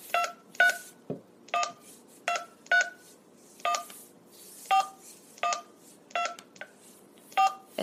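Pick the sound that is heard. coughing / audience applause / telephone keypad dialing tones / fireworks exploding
telephone keypad dialing tones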